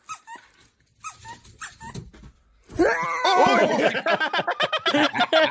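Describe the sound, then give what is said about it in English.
A dog whines and whimpers in short, thin bursts, then breaks into loud, rapid, agitated barking and snarling that continues until the end, leaping at least six feet into the air. “Yeah, that scared me, man. That dog has Touchy.”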